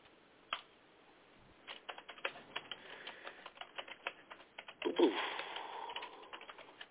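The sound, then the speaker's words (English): Rapid, uneven keyboard typing clatters steadily in the background of a phone call while the caller waits to be put through, a flurry of sharp key clicks with brief pauses, heard over a faint, muffled line-like hiss. “Boy, that's a lot of typing there in the background.”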